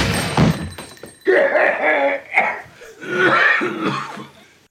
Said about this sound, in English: That's professional acting coughing. That coughing is so intense.